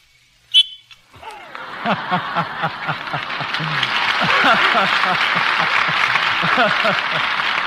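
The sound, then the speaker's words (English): A single short, shrill whistle blast rings out as Betty Bacall blows her special whistle, then a studio audience breaks into laughter and applause that swells and keeps going. “It's Betty Bacall blowing the special whistle which he carries for that special purpose.”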